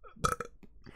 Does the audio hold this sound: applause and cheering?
no